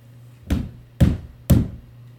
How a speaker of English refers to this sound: Sabrina jumped at the knocks. She turned off the light and shut the basement door. Who could be knocking?